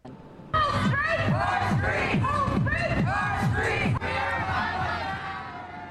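A large protest crowd in Hollywood, Los Angeles, over the beating death of Tyre Nichols chants in loud, rhythmic unison, voices rising and falling in repeated shouted phrases over a steady low rumble, dense with no single voice standing out.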